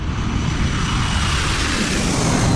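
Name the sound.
airplane flying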